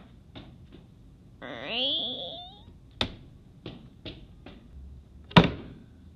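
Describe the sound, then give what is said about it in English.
A house door creaks open with a long, rising squeal, then a few light knocks and taps follow before the door shuts with a loud, sharp slam as someone walks out of the house to a car. No one speaks. “Lex Luthor walks out of his door and to his car.”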